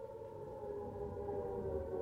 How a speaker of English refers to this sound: And yes, even with a siren going off.